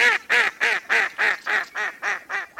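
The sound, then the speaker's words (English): A duck quacks about nine times in a steady, evenly spaced series, each call loud and nasal, with no voices in the background. “For example, in spring, in wetland-rich areas protected by conservation programs in the Dakotas, you can find more than 100 breeding pairs of ducks on a single square mile of prairie.”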